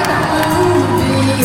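A concert crowd at a benefit show where a musician performed cheers and whoops in a dense, steady roar. Scattered higher shouts rise above the continuous wash of voices. No distinct words can be made out.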